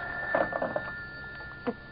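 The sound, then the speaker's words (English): A telephone bell rings in a short rattling burst, followed after a pause by a brief second jingle, thin over a steady high hum. No one speaks. “Shall I get it for you? No, I'll get it. At least I'm safe on the phone.”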